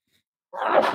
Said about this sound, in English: And I'm going to sneeze.